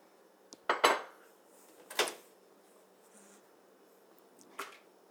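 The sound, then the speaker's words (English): A mug of tea being put in the microwave to warm it up: a few sharp ceramic clinks and clunks, spaced apart with quiet gaps between them, and no one talking. “I'm just microwaving my tea.”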